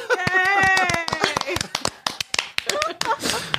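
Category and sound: crowd, clapping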